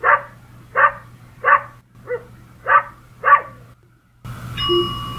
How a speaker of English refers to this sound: So check out an example here. An example might be, what if a dog is barking?